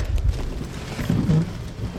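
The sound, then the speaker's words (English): Steady rain patters on a car with its windshield wipers not turned on, a dense, even hiss over a deep rumbling drone, holding at a moderate level throughout with no voices. “All right, now it's raining, but she has not turned on the windshield wipers.”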